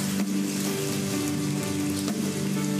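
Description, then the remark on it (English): A church audience claps to honor first-time visitors, a steady, dense wash of applause that holds at an even loudness for a few seconds, with a faint sustained musical tone underneath. “Church, can we celebrate that? Honor those first timers and what they've done today.”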